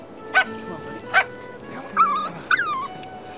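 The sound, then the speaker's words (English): Two well-groomed Labrador puppies with a bow on them give two sharp, high yips about a second apart, then two rising and falling whimpering whines over a low, steady background hum. “Like, beautiful, perfect, well-groomed Labrador puppies with a bow on them.”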